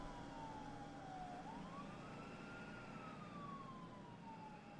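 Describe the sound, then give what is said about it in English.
An emergency vehicle siren wails with a slow rise and fall, steady over a constant low rumble of road noise, fairly quiet throughout. “I found only cold air, blowing forward to kiss me on the lips, vanishing at the sound of sirens.”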